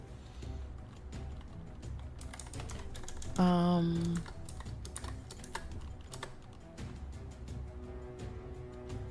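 Rapid, uneven clicking of keys on a computer keyboard, typing during an online tabletop role-playing game, continues throughout at a moderate level, briefly overlapped midway by a short tonal, voice-like sound.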